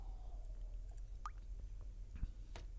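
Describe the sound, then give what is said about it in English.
Someone quietly sipping water: a few soft, wet slurps and swallowing clicks spread over a few seconds, with a low steady hum underneath and no talking. “And I want to read this scripture after I take a sip of water.”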